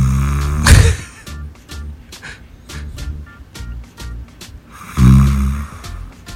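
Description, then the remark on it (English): Two loud, deep snores roughly four seconds apart, each a rumbling inhale with fluttering nostril flaps, separated by quieter wheezy breathing and faint clicking sounds. “That's a good, strong snore. It is. That's some solid nostril flaps.”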